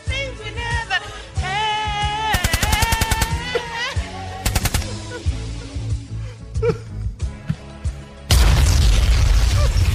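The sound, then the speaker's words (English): Rapid bursts of gunfire crackle over a tonal, musical background, followed near the end by a loud, roaring explosion-like blast that fills the sound. “Do we have any gunshots? That would work as well.”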